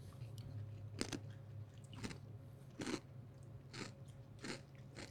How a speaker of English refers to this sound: It's got that classic Takis crunch.